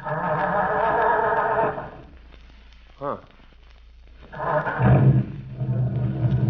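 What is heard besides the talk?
car engine running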